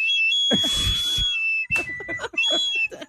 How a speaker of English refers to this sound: I did not anticipate a whistle to come out of the stupid straw. It's a ribbed straw.